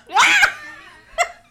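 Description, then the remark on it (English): One loud burp made on command, with a rough, voiced tone lasting under half a second, followed about a second later by a brief, quieter throat sound. “Burp on command. Burp on command.”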